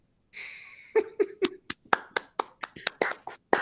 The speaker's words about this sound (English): Round of applause for Noah Crow